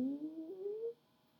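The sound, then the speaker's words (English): A single human voice imitates a cow's moo during the cow pose of a yoga exercise, a sustained tone of just under a second whose pitch slowly rises before it cuts off into quiet. “And then cow pose, if you want to add a little moo.”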